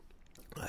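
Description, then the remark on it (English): A quick, quiet sip of water, a soft wet slurp that swells briefly near the end, with no one talking. “And I have to take a, excuse me, I have to take a sip of my water.”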